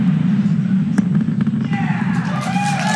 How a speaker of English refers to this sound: A Falcon 9 rocket sending 40 satellites for OneWeb yesterday evening. About 8 minutes after the roar of the engines, the Space Coast heard a sonic boom. Really incredible views from the first stage.